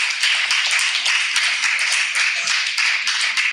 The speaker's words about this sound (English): They gave him an applause at least.